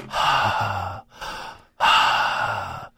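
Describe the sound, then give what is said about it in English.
A voice imitates the heavy, loud mouth breathing of a person on a phone call who has not muted: two long, noisy breaths with a brief pause between, breathy, with no words spoken. “Mouth breather. He's just like, whoever's breathing really loud, can you please put your phone on mute?”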